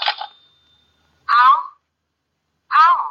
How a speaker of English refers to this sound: Excuse me, the phone.